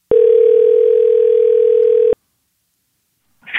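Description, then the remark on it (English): A steady, loud telephone ringback tone of an outgoing call to a friend holds for about two seconds, then cuts off into silence before a brief faint voice-like sound at the end. “So now it's time for a segment of the podcast called Phone a Friend, where we do just that.”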